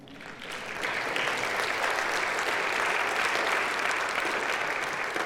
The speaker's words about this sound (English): I wasn't sure if there would be an applause following that recommendation or not, but there was, so you're welcome, my friend.